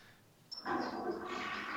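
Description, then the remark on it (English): A toilet flushes in the background of a phone call: after a quiet moment, a sudden surge of rushing, gurgling water starts and keeps roaring steadily, with no voices. “There's the flush.”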